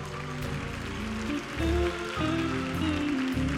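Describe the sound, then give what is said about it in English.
A church audience claps continuously in a dense, rain-like patter to thank the Lord, layered over sustained organ or keyboard chords that shift pitch partway through. “Come on, clap your hands and thank him.”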